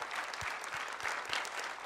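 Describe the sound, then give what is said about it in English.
A church audience applauds the pastor's family steadily, a dense wash of many hands clapping at once, with a few louder individual claps thumping through at a regular pace. “Give them a hand clap.”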